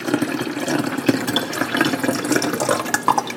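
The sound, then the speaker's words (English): Liquid pours steadily from a half-liter bottle through a reusable funnel into a 1-liter bottle, a continuous gurgling, splashing stream heard for a few seconds, with no one speaking. “I'm going to pour this into the 1 liter bottle from the half liter bottle.”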